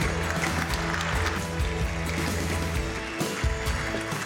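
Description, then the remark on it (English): A crowd claps steadily for several seconds in applause for a panel at an event, a dense, continuous wash of hand-clapping, with some faint tonal background sound underneath. “Big round of applause for our panel.”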